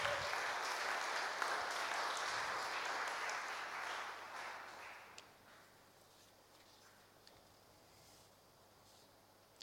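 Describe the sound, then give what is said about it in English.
An audience applauds, a steady dense patter of clapping that thins out and fades after about five seconds, leaving quiet background noise with a faint low hum. “Thank you very much. Give them a round of applause.”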